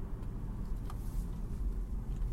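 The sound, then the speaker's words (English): Steady, low rumbling road noise from inside a moving car with only the driver aboard, going 35 in a 35 zone, a constant muffled drone with no voices and no breaks, holding at an even level throughout. “It's just me in the car.”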